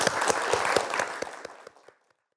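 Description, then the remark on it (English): An audience bursts into applause, dense clapping with a few sharper individual claps standing out, holding steady and then thinning out and fading to silence within about two seconds. “Round of applause for Daryl.”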